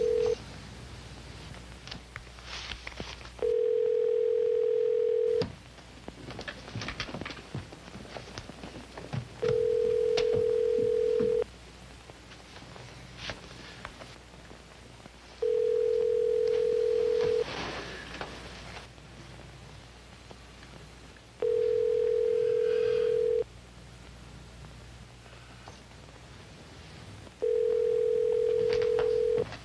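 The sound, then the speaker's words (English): A telephone call being placed from New York to the Kremlin in Moscow, heard as five long, steady tones repeating every few seconds on the line, with a faint rustling hiss between them and no voices. “Knowing the U.S. space shuttle was not available, she called the Kremlin.”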